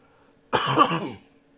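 A single raspy cough from someone who can't shake a lingering cough bursts out and fades within about half a second, with faint background hum before and after and no talking.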